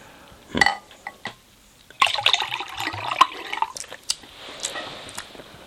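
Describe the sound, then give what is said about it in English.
A short splash of coffee is poured into a carbonated lemon drink, a brief gurgling trickle lasting a second or two, with a sharp glassy clink just before it. “Yeah, I'm going to go a little splash more and give it a little more of that body.”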